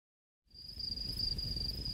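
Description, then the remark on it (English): After a moment of silence, crickets start a steady, high-pitched trill that carries on without a break over a low outdoor rumble. No one speaks. “Hear them crickets?”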